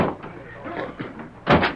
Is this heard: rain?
no